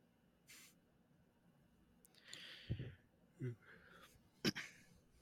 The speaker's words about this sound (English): I inhaled and coughed.